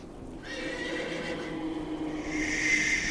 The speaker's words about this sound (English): All right, well, looks like you bought yourself a fine horse, Mr. Matsuhara,